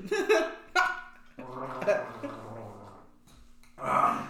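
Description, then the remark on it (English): Exaggerated drinking gulps from a can of crude oil: a couple of quick swallows, then a longer wet, gurgling stretch, a brief pause, and one final loud gulp. “I gotta wet my whistle with this can of crude oil.”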